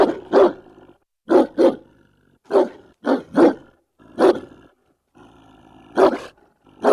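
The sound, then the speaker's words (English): A German shepherd dog barks loudly, about eight deep, gruff barks in irregular single and double bursts with short pauses between, with no voices present. “Well, I know that avid listeners will be quick to point out that that was indeed the barking of a German shepherd rather than Turkmenistan's native alibi, but nonetheless, it's a breed of shepherd dog and helps us illustrate this item”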